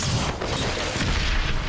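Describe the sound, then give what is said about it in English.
A loud, sustained blast rumbles through, with heavy low-end roar and crackling noise filling the whole moment: an explosion in a scene from the primetime drama Dynasty, with no voices. “Been an explosion.”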